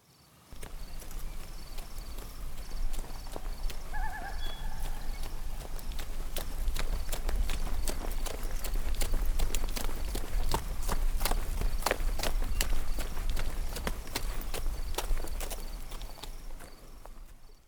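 Horse hooves clip-clop on a hard road in a steady, brisk rhythm, growing louder as they approach, over a low rumbling background with a brief faint chirp early on.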